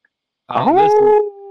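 A single drawn-out wolf howl sound effect that swoops upward and then holds a steady, mournful tone, heard loud with no talking over it.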